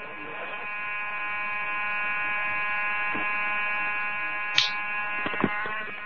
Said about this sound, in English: It didn't do that. It set off an alarm. You didn't reset it in time.